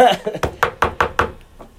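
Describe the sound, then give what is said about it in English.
Five firm, evenly spaced knocks on a door in quick succession, fairly loud, followed by one fainter knock after a short pause. “How much you want to bet they're going to come knock on my doorstep?”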